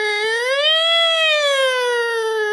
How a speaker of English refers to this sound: I don't know why my ambulance. It sounds like an ambulance. It's a sad, sad ambulance. It's just like a cat just queefing. It just sounds bad.